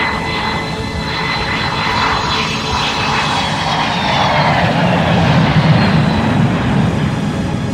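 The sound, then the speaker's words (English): In a film scene, a steady, loud airplane engine drones throughout as the plane carrying Jim's father flies overhead. It is a broad roaring hum with whining tones, swelling slightly toward the end. No voices are heard. “Jim's father's on that plane.”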